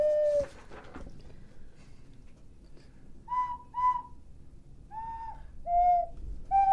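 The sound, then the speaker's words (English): An odd, eerie whistling like wind: a series of short, wavering whistled tones arrives in separate bursts over a low, steady background rumble, fairly close and moderately loud. “Is it just me, or is the wind down in the Antarctic making this odd whistling noise”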